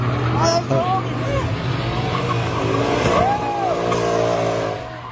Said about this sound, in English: This guy is driving around, so you can hear the engines already. It's souped up.